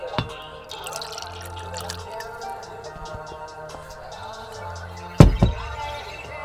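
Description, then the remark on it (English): A brief wet slurp of someone sipping a drink, with a small liquid click early on and a louder gulping burst near the end, over a steady low background drone. “Another sip.”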